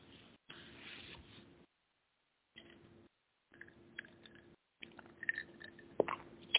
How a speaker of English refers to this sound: Need a sip of water.